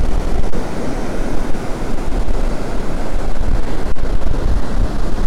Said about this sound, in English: It's quite windy here, but it's nowhere near as bad as the atrocious conditions the last time I was here, where I couldn't even make it onto the beach.